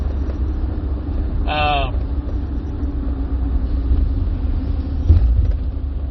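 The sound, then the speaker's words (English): A car engine idles with a steady, low rumble heard from inside the vehicle as traffic comes to a stop in Indianapolis, broken by a brief high-pitched squeal early on and a faint knock near the end. “Traffic's all coming to a stop, sorry.”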